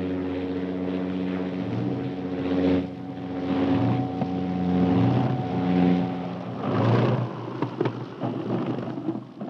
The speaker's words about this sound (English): Last week, the seaplane was about to land when a small boat was discovered adrift on the lake, making the already precarious landing more dangerous.